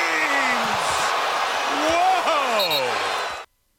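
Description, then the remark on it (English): A Boston basketball arena crowd roars loudly and steadily for about three and a half seconds, reacting to their own player getting bodied, with scattered shouts and voices sliding up and down through the din before it cuts off abruptly. “Play that one more time and just focus on after Tirico says, James, listen for the crowd and how they react to their own player getting bodied.”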